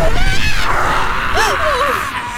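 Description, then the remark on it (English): A wavering, high-pitched scream rises and falls over a dense, noisy background, fairly loud and drawn out, with no clear talking. “You hear that? You can scream at us all you want.”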